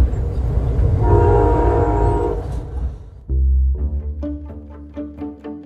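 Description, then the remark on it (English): A passenger train rumbles steadily along the California coastline on a gorgeous morning, then its loud horn sounds in a long blast that shifts into several short, pulsing honks near the end. “As I watch the California coastline pass by from the comfort of my train seat, remembering Bell's comments made the million-dollar views of the water on a gorgeous morning a lot more unsettling.”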